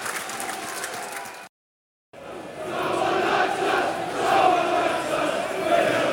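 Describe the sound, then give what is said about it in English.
A football stadium crowd at a Millwall match roars with a steady, dense wash of many voices, broken by a brief gap of silence before the noise resumes, swelling louder with rising and falling surges of chanting. “The ground has filled up pretty well now.”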